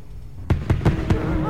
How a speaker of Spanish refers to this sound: Las bombetas y celebraciones de fin de año pueden alterar a su mascota.